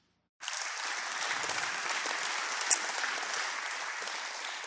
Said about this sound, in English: And people are going, amen. And they're going to clap for this.